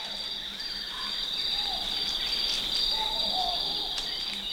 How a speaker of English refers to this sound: It's dawn, and baboons are joined by many different birds, amphibians, and insects to create this wilderness opera. Bernie Krause made this recording for his Wild Sanctuary series. He called it African Safari Zimbabwe.